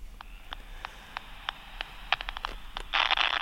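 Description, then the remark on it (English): Crackly electronic static from a hand-sized 1980s bat detector just switched on, picking up no bat calls: sharp clicks at irregular intervals, bunching together, then a louder burst of bright hiss at the end. No voices. “We get some static, but no bat noises.”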